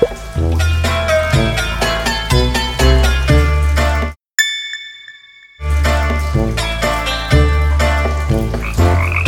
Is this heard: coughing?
no